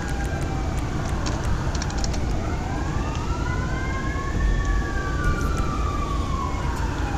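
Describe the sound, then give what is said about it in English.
Emergency sirens from a fire engine and an ambulance arriving in Del Perro wail over steady traffic rumble, their rising and falling tones sweeping up and down as they draw closer, fairly loud without fading. “Man, the fire department is quick. Good God. And so is the ambulance when they spawn on Del Perro.”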